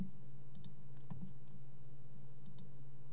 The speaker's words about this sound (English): I keep on clicking the wrong thing, and it's getting kind of annoying.